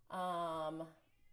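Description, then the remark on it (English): A single loud, drawn-out meow from a male pet cat, clear, lasting just under a second before fading into quiet background noise. “Oh my gosh, I wonder if you guys can hear my cat. He's like so loud, I can even hear him through the AirPods.”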